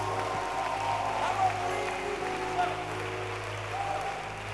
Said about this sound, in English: I mean, clap your hands for 40 books.